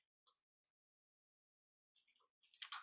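Someone takes a sip of water: a couple of soft mouth clicks, a pause, then louder wet gulping and breathy swallowing sounds at the end. No one speaks.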